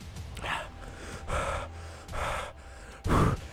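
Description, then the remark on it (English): Heavy breathing after eating a hot pepper: four loud, gasping breaths come at a steady, labored pace about a second apart, the last one the strongest. Nobody speaks. “This is heavy breathing ASMR.”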